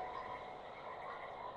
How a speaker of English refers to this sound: Oh, I hear a croak. You're right.